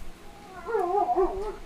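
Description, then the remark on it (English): A dog whimpers in a high, wavering whine that rises and dips over about a second, fairly soft, with no talking around it. “I'm so sorry if you can hear our dogs, by the way.”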